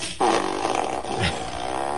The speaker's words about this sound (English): I did it with a fart machine. Fart machine in full effect.